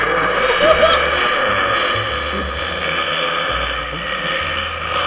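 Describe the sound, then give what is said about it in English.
A long, drawn-out burp rumbling low and raspy for about five seconds, steady and fairly loud with a gravelly, buzzing texture and slight wobbles in pitch, with no talking. “It actually wasn't that hard to find burps.”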